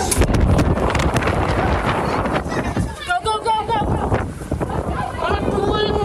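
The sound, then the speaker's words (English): Strong 110-mile-an-hour wind gusts roar loudly and almost without pause, bearing down on a restaurant door, while indistinct voices break through briefly in the middle and near the end. “The 110-mile-an-hour wind gusts bear down on the restaurant door, trapping them inside.”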